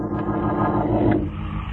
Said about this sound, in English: drove over to Rembrandt's place, rustled him into my car, and we took off